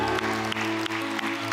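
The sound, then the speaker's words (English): An audience applauds steadily, giving the Lord a round of applause, a dense wash of many hands clapping at once, with sustained musical tones holding underneath throughout the short stretch. “Let's give the Lord a great big round of applause today.”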